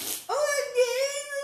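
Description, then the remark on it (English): A voice imitates a theatrical fart: a brief breathy hiss, then a long, squeaky, buzzing tone held for over a second, fairly loud. “And so therefore I couldn't even identify a fart with a human anymore.”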